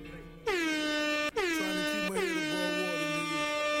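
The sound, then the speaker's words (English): Three loud, brassy air horn blasts used as a sound effect in a rap song, in quick succession. Each starts with a sliding pitch bend before holding a harsh, harmonically rich tone, with no talking over them. “That's funny, because he had a air horn in his shit, too.”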